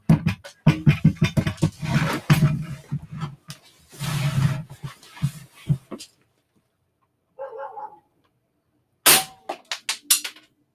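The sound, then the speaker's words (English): A gunshot fired at a candle ricochets: a sharp, loud crack bursts out, then another follows a second later. Before it come several seconds of loud, rapid, choppy bursts and a brief pause. “I'm gonna try and shoot a candle. This can go one of two ways. It ricochets and hits us.”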